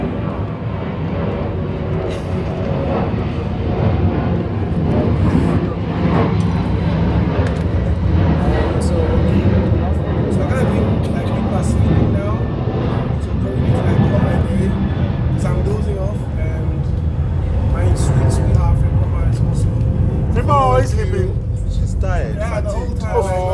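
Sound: airplane passing overhead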